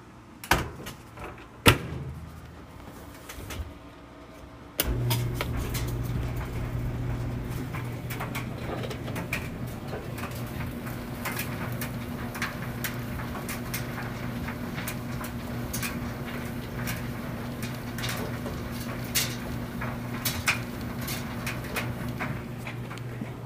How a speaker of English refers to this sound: That was the dryer. Mimi starting the dryer, wasn't it?